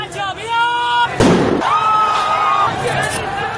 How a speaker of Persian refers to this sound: فیلم هایی که از راهپیمایی های معترضان در اینترنت منتشر شده تلفیقی از صداهای مردم، شلیک گلوله و شیون جمعیت است.